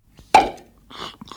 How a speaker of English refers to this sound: There is our cork popping and wino slurping. That's the only sound effect I could find of just like the slurping. I mean, I guess I could edit out the rest, but I thought it was funny how fast the person started drinking.